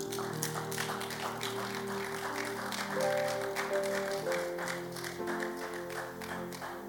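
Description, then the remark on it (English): An audience claps steadily, a dense, continuous patter of many hands lasting several seconds, with sustained keyboard or organ notes holding underneath and no one speaking. “I thought you'd be clapping.”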